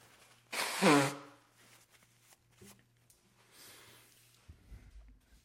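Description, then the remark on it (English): A single loud nose blow, a short noisy honk lasting about half a second, followed by faint rustling and soft handling sounds over a low steady hum. “I have to blow my nose.”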